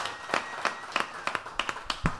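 Brief, sparse applause: around ten sharp hand claps in a fairly steady rhythm, moderately loud, with no one talking over them.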